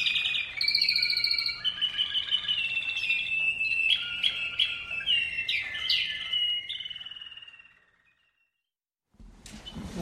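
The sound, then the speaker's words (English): A songbird in a song competition sings a long, rapid, bright song of trills, whistles and chirps that runs for several seconds before stopping, with a brief burst of noise after a pause. “And you can just tell they really enjoy singing and creating a musical masterpiece. The Mozarts and Beethoven and Chopins of the bird world.”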